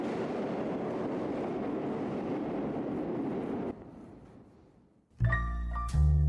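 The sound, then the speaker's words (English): A subway train rumbles loudly through an underground station, its roar dropping off and fading before a sudden, loud high-pitched screech of brakes or chimes rings out near the end. “every chance he gets, it's back down into the subway system”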